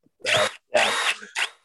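A power drill in a garage whirs in three quick bursts, two longer runs followed by a brief final blip, loud with short pauses between and no talking.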